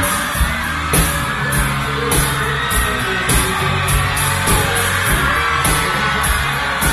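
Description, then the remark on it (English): A concert crowd cheers and yells continuously at full volume, a dense roar of whoops and shouts with bursts of louder screaming rising over the steady wall of noise, as a surprise guest singer walks out on stage during the second verse. “The crowd's going nuts.”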